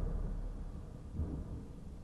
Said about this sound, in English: And the thunder, yeah. Yeah, Scooby-Doo and the frantic thunder.